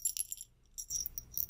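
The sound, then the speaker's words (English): A small bell, used as a second bell in a little hearing test, jingles in two quick bursts separated by a short pause, its bright, tinkly high ring rattling briefly with no voices present. “I have another bell.”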